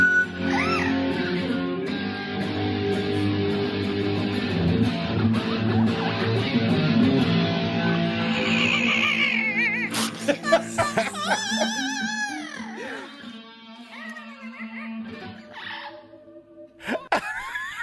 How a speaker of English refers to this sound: You have got to call that parrot ….